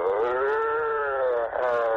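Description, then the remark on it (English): A voice lets out a long, drawn-out moan as a demonstration of an obscene phone call, a steady mid-pitched tone that dips slightly, breaks off briefly, then resumes. It is loud and alone, with no other talk. “Moaning.”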